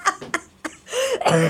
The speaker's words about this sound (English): Listen to that cough. You're doing good. You're doing good. Yeah, cut out the smoking.